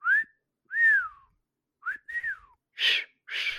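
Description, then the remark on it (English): A person whistles four short, wavering notes with gaps between them, then lets out two breathy, airy blows that barely carry a tone. Fairly clear, with no talking. “I mean, shittily, but I guess. But you're whistling.”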